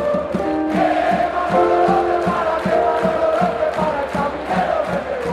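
A large crowd of sports fans sings together in unison, a steady sustained chant of many voices with a rhythmic thumping beat underneath, loud and continuous throughout.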